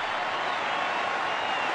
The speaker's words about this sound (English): 18,000 people rise to their feet and cheer one of the greatest batsmen of all time.